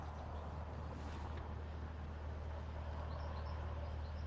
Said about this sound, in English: So much traffic, it's ridiculous